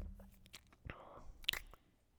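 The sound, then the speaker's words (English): A quiet sip of a nitro cold brew coffee, with soft slurping and a few small mouth and swallowing noises. No one speaks. “Hold on, I'm sipping a nitro.”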